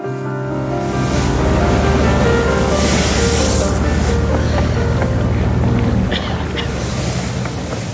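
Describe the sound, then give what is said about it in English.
A public ferry's engine drones steadily as it moves across open water, with the constant wash of waves and gusts of wind buffeting. No voices are heard. “It's a public ferry, not a police boat.”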